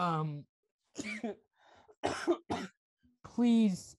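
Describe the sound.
A person coughs repeatedly, several harsh, throaty bursts separated by short pauses, some raspy and voiced, the last one loud and strained.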